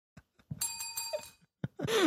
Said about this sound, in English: Heck, even the bell is a reference.